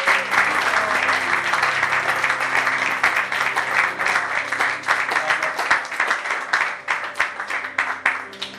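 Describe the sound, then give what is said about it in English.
An audience at a Christian worship service applauds steadily to glorify Jesus, many hands clapping in a dense, crackling wash that stays loud throughout, with faint steady tones and murmuring underneath. “Can everyone give a big clap?”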